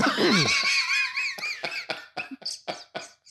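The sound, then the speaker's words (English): Someone clears their throat: a drawn-out, strained vocal rasp followed by a quick series of short, choppy hacking bursts, loud and with no talking. “I got to clear my throat because I'm about to lay the truth.”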